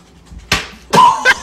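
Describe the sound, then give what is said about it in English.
A sharp, wet slap of a tortilla lands on a face during a game, followed moments later by a second louder smack with a brief squeak or yelp after it, with no talking over it. “Wow, she slapped him pretty good.”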